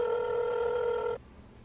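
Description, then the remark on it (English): A phone line ringing on an outgoing call: one steady, buzzy ringback tone holds for just over a second, then cuts off abruptly, leaving only faint background hum. “Okay, let's call him right now.”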